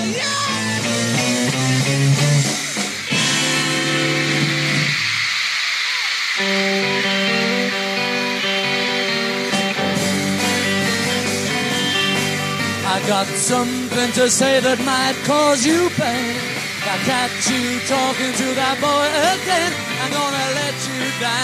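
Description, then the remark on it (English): A band play live at the Hollywood Bowl, the band and singer nearly drowned out by a constant, deafening wall of high-pitched crowd screaming that never lets up. “What you heard there was actually recorded at the Hollywood Bowl a few nights before, but it gives you a sense of that deafening scream.”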